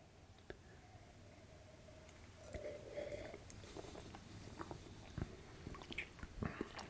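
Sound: sipping beer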